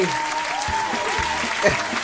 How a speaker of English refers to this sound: Has anybody ever clapped that hard when Benny Hill came on? I don't think so.